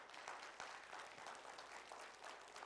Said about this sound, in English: Y'all are kind of getting the clapping stuff down.